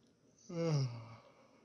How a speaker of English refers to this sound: Big yawn. Yeah, listen to it.